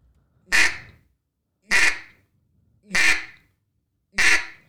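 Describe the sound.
Four loud duck quacks blown on a duck call, evenly spaced about a second apart, each a short raspy nasal burst with silence between and no talking.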